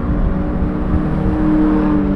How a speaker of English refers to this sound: After sitting in traffic for a while, I finally made my way back onto the expressway, crossing over from the Bronx to Queens. Muscle cars zipping past me at high speed.